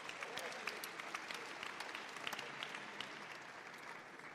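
A crowd at the Imago Dei lectures applauds steadily for several seconds for a graduate of Reformed Theological Seminary in Charlotte, a dense wash of many hands clapping with sharp individual claps popping out, holding an even level throughout.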